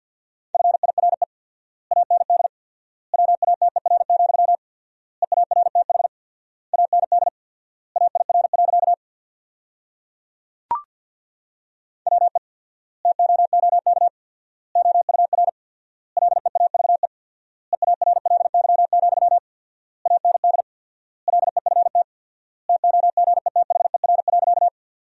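Rapid Morse code at 50 words per minute with four-times word spacing, sending a practice sentence built from the top 400 words as a steady mid-pitched beep, keyed into quick bursts grouped like words with short pauses between them, plus one sharp click partway through. No voices.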